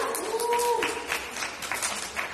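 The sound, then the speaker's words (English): An audience breaks into steady applause, many hands clapping in a dense, crackling patter that holds at a fairly even level for a couple of seconds, with faint voices mixed in. “Give yourself a hand of applause.”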